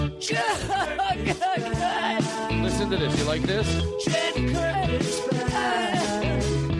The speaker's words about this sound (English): Let me play this other jingle for you. Let me play this. But let's do the big opening. Play this.